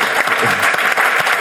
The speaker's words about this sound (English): I mean, everybody gets a round of applause, but you did, you know, in one day, an application for the pocket PC and the smartphone with graphics.